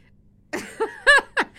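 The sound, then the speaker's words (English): A sneeze bursts out of silence with a sharp breathy rush, followed by a few short voiced gasps that rise and fall in pitch before fading. “Bless you”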